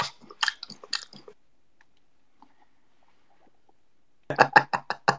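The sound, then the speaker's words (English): Wet chewing of a piece of gum, a quick run of loud smacking bites at the start, a quiet pause, then another rhythmic burst of chomping near the end. “Nah, it's a piece of gum.”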